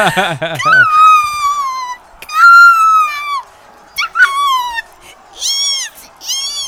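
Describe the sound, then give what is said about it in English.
A human voice imitates a seagull, like the birds from Hitchcock, crying "Eat!" in a series of loud, high, nasal cries, each sliding downward in pitch, separated by brief pauses. “Your little eat sounded like... Good. That's the birds like from Hitchcock. Like a seagull, yeah.”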